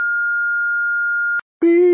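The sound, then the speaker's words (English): A single long, steady electronic voicemail beep after a greeting sounds clearly for over a second, cuts off abruptly, and after a brief silence a voice begins speaking. “Leave a message.”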